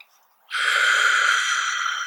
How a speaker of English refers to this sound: So, breathing into the whole body and then squeezing out, pulling the abdominals back. Breathing in, letting everything relax and float.